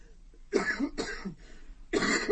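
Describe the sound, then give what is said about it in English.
A person coughs three times, two quick harsh coughs followed by a short pause and then a third, with no talking in between. “Everyone's got a cough in Johannesburg at the moment, I might add.”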